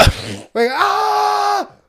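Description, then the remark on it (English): A human voice mimics an animal screaming at a slaughterhouse or farm with one loud, drawn-out wail lasting about a second, preceded by a short breathy, rasping burst. “Imagine you go past like a slaughterhouse or a farm, you just hear screaming.”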